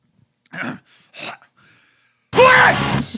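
A man lets out a loud, raw scream, preceded by two short, sharp breathy bursts as he winds up, then one sustained shouted cry that fills the end.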